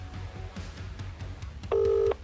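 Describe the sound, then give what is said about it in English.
A single loud, steady electronic tone like a phone's outgoing ringback buzz sounds for under half a second, after a quiet stretch of low room rumble and faint clicks. “He's screening my call. I believe he'll answer.”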